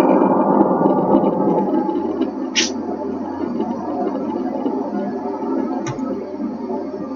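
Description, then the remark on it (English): An avalanche of sand pours in a steady, dense rushing hiss with a low rumble underneath, lasting about seven seconds, broken by two brief sharp ticks partway through. “And now we hear the avalanche of sand.”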